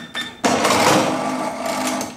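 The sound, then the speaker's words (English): A cash register rings up a barcode: a brief electronic beep, then a loud mechanical whirring clatter that runs steadily to the end, with no voices. “I'll put it through the cash register now.”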